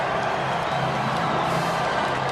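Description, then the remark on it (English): A large stadium crowd of BYU fans in blue cheers as BYU players come over to celebrate after the game against Tennessee, a steady, dense roar of overlapping voices, with loudness holding level throughout and no single voice standing out. “They're still cheering it while everyone in orange is filing to the exits.”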